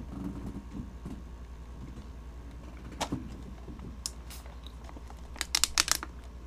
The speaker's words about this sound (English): I'm pouring myself lemonade, ladies and gentlemen. I do not drink.